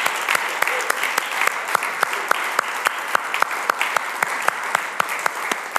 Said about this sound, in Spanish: Dale un aplauso fuerte, Señor.